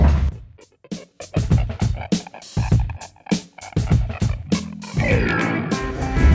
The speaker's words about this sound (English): Okay, we're back on hopefully less dog noise in the background.